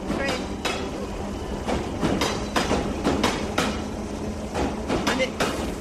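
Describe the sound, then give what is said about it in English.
An underground train running, its wheels clattering in a steady irregular series of sharp clacks over a continuous low rumble, fairly loud throughout. “the driver of that train almost took a heart attack.”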